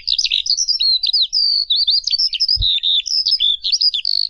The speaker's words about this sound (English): Okay, well, normally you'd hear that like 50 or 100 meters up in the air, because that's a, unless I'm wrong, which I could be, that's a skylark, and they give that song when they're in flight.